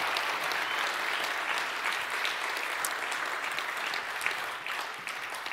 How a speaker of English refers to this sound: You're cheering for what God's done in your life. What he's done in my life.